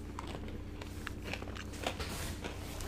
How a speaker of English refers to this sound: I apologize once again for the smacking. I'm not smacking. I don't have my mouth open when I'm chewing, but these pretzels are really crunchy.